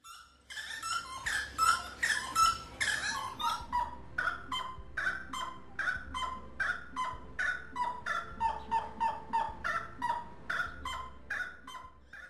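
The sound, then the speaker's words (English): A rail, a small wetland bird also known as tres potes or three pots, calls loudly in a long, rhythmic series of harsh, clucking notes, crowded and overlapping at first, then settling into steady repeated pulses, with no talking. “They are also known as tres potes, or three pots, due to the sound their call is said to make.”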